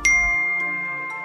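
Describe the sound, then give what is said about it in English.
A bright electronic text message notification chime rings out once with a sharp attack. Its clear tones sustain and slowly fade over about a second. No one speaks. “Then she received a text message.”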